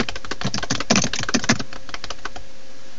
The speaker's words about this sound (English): And he's still typing. And typing. And typing.